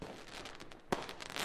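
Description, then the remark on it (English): Fireworks exploding: a steady wash of crackling bursts with one sharp, louder bang near the middle, fairly quiet, with no voices. “Mud Hens had a great fireworks show.”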